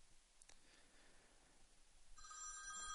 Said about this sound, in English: Huh, that's Ken Scaler. You know what? Let's call him up. I'm not going to take this phone call here. I'm going to call him up on the radio.